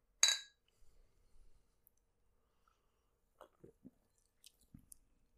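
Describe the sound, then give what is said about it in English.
A single bright clink as two cans of a flavored alcoholic drink knock together in a toast, followed by quiet sips, swallows and small handling noises with no talking. “Well, then cheers.”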